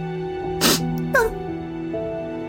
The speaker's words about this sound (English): As more memories flood Temple's wires, a creaking can be heard nearby, followed by a slight sniffle.